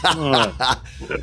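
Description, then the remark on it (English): A person imitates a chicken clucking, with three quick, strained vocal bursts followed by a softer fourth, fairly loud. “quickly tell us, why were you calling that guy a chicken?”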